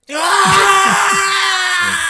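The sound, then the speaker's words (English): A single loud, raw primal scream by Busta Rhymes in the middle of a fight scene in a movie, held steadily for about two seconds, a strained sustained howl with no other voices. “My favorite part is Busta Rhymes' primal scream in the middle of the fight.”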